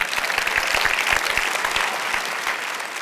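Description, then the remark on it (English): An audience claps steadily for a few seconds, a dense burst of many hands with scattered sharp individual claps, holding fairly loud before easing off slightly toward the end. “You clap for that.”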